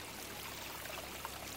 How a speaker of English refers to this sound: Hey, there's a fountain over there in that corner. It's a bird fountain. It literally has stone birds, and the fountain water flows from their mouths.